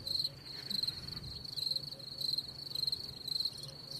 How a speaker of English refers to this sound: Crickets. Crickets.